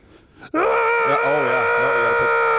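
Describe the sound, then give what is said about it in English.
A person's voice imitates a 10-year-old boy's scream: after a brief quiet moment, a loud, sustained, wavering high-pitched shriek erupts and holds steady for about two seconds. “Do the scream.”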